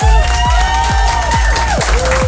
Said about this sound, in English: Oh, I gotta say, I'm so happy to hear that applause, because yeah.